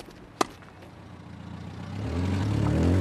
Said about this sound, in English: Cars are leaving the car park after a game in the Gaelic grounds.